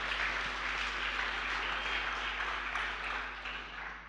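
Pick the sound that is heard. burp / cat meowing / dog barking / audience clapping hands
audience clapping hands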